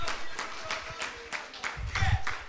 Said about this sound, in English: If you believe the word this morning, clap your hands and shout yes. Hallelujah. Hallelujah.